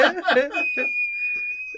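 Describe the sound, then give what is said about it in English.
A brief burst of chuckling gives way to a sustained, steady, high-pitched whistle, a person imitating a boiling kettle, held fairly loud for over a second. “Oh, kettle's boiled.”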